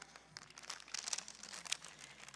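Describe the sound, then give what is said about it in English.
A paper bag is crinkled in a steady run of crisp, crackling rustles for a couple of seconds, fairly quiet, with a few sharper crunches standing out; no one speaks. “So I got my paper bag.”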